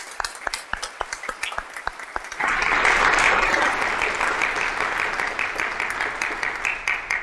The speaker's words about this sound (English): And I know for a fact that they are live streaming with us right now, so they will hear us as we applaud them.